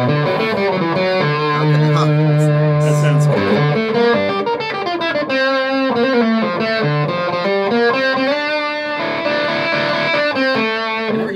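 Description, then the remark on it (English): An electric guitar played through a distortion pedal with filter, distortion and volume controls, thick and saturated with sustained notes and short melodic phrases, loud, with no talking. “Does this have the tone cut like a rat pedal had?”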